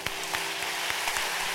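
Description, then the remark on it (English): A church audience applauding their pastors steadily, a dense wash of many hands clapping at once with a few sharper claps standing out, holding an even, fairly loud level throughout with no voices. “Clap for them again.”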